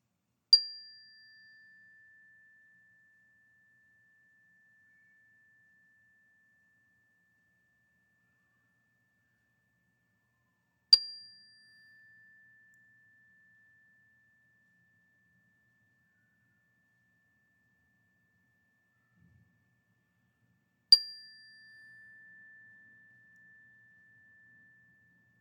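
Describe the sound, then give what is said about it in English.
A meditation chime is struck three times to begin a centering prayer, about ten seconds apart, each strike ringing out clearly and then sustaining a long, pure tone that slowly fades into silence. “And I'm going to hit this chime 3 times for that.”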